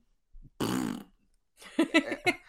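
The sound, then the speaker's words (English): A voice blows a single wet, sputtering fart noise lasting about half a second, loud, followed by a brief pause and then a few words of speech. “It's just wet fart noise if you don't win one game for Carey Price at the end of the season here.”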